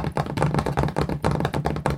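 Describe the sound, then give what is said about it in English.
Rapid, dense clicking and tapping of long fingernails while cooking in a sped-up cooking video with no music, coming in busy bursts with brief pauses between them. The sharp, crisp taps are fairly loud, and no one speaks. “No, she's got nails, and rather than putting any music on, this is what it sounds like.”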